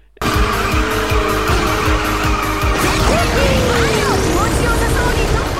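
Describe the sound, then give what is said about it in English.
A Mario Kart video game race roars with a constant engine drone and screeching tire skids, then a rising whoosh of a speed boost after a drift sweeps upward over the busy racing noise. “I don't know if I'd be able to find a sound clip of it, but if I do, I'll put it in here.”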